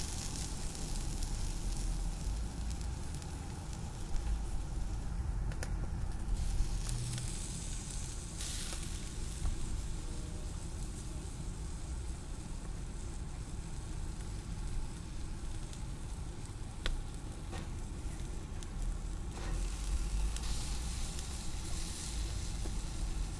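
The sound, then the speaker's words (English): Two slabs of beef ribs sizzle on a smoker grill, placed at the end opposite the heat and smoke source of Weber pecan wood chunks, in a steady, crackling hiss that holds at an even level throughout, with a few sharp clicks and pops scattered through it and no voices. “Now it's time to place the 2 slabs onto the grill, opposite end of the heat and smoke source.”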